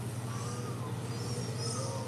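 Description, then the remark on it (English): Faint, drawn-out wailing cries, like a baby's, rise and fall over a steady hiss and low hum. The screeching calls are birds that scream all night, with no talking heard. “Yeah, it sounds like babies, but it's actually birds who just scream all night and sound like babies, if you're just joining us.”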